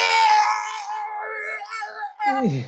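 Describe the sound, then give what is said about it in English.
A voice imitates Yoda's battle screaming from his CGI fight scene: a loud, strained, high-pitched cry held for about two seconds, then a short yelp that swoops downward. Alone, with no words. “His battle is really bad. And his constant screaming.”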